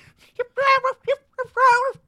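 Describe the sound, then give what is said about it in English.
A coyote barks and yips in a quick series of short, high, tonal bursts, some drawn out into brief wavering howls, clear with no talking over it. “Oh no, I hear him coming back, the coyote.”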